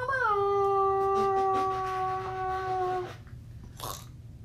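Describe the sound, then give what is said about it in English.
A squeaky, mouth-made fart noise made by trapping air between the teeth and the top lip holds one steady, buzzy pitch for about three seconds, then breaks off; a short breathy puff follows near the end. “Trap air between your teeth and your top lip, and it makes a fart noise for some reason.”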